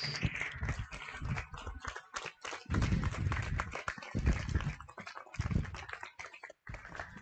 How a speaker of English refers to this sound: Let's give him a welcome and a round of applause as he comes up and teaches us today. Amen.